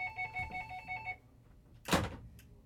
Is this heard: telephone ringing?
yes